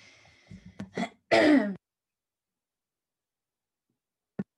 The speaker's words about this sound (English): You just mute your mic by coughing. I tried to mute and then cough, but obviously I'm now going to have to edit this bit out. You did that in reverse.